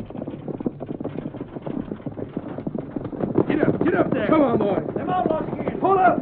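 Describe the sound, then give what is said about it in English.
A horse-drawn stagecoach rolls closer, hooves clip-clopping in a steady rhythm with rumbling wheels, growing louder over about six seconds while voices call out over the noise. “Here she is. Get a chance to draw up beside us first.”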